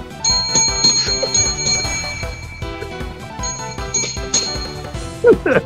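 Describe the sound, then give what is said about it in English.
A dropped bell rings with several bright strikes, each leaving a sustained metallic tone that lingers and overlaps, with a brief voice-like sound near the end. “Did you drop the bell?”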